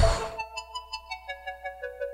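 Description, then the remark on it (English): A game show buzzer goes off: a brief noisy burst, then a bright electronic tone that pulses rapidly and evenly, about six beats a second, with no one talking over it. “Hands on buzzers.”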